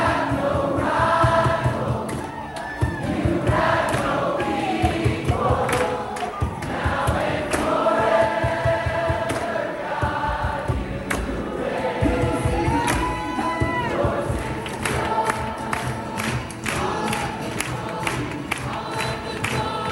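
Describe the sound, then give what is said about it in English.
A large crowd sings improvised worship together in loose, overlapping voices, a continuous swell of unison and harmony with no clear beat, loud and sustained throughout, with occasional shouts rising above the singing. “One person will start singing, the rest will follow, and then it's just a crowd.”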